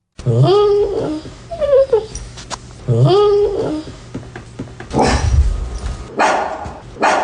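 A dog named Chloe barks and yelps in a couple of loud bursts with rising, whining tones, followed by rougher noisy sounds toward the end.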